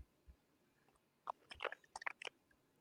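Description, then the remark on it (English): Crackly chewing on hard plastic Lego bricks: a quick flurry of sharp clicks and crunches in irregular bursts, fairly quiet against a faint background hum, with no one talking. “she chewing Legos like King was”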